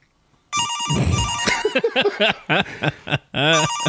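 A car phone rings with a loud, close electronic ringtone, its steady warbling tones mixed with melodic, voice-like notes, pausing briefly near the end before ringing again.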